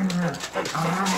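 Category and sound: animal, dog barking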